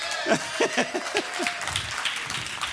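Several sharp hand claps ring out in a quick, slightly uneven burst, moderately loud and close, then taper off into a low murmur of room noise.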